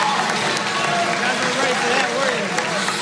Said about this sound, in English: The best part of that is sort of the uncomfortable applause as people are like, oh my God, he's going crazy. Like, should we do something? Should we applaud too? What's happening? Like, yeah, those are reporters.